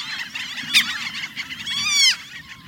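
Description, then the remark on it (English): A dense chorus of overlapping, high, nasal Franklin's gull calls chatters continuously, with a sharp burst early on and a louder, wavering, laughing call swelling near the end. “The Franklin's gull is such a bird.”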